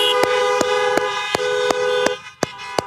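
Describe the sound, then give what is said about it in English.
Several car horns blare together in a long, steady chorus for about two seconds before cutting off, while sharp clicks tick at a regular pace throughout. The horns are honked to celebrate new life in Jesus Christ. “And everybody else, how about we honk our horns to celebrate new life in Jesus Christ?”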